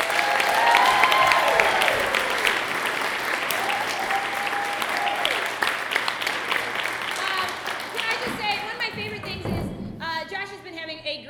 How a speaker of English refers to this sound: Yeah, but he's also my best friend besides Bob Kelly, and he's joining us on stage tonight. Everyone give a round of applause for Josh Feemster!